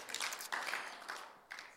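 A church audience claps together after a prayer, in a dense, steady patter of many hands, swelling and easing in a few soft waves with no voices over it.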